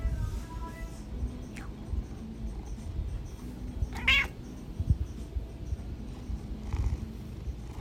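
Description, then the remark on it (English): A pet cat meows a few times, short separate calls spread across several seconds, with the loudest one near the middle, all over a steady low rumbling background. “God, my cat's scared the shit out of me.”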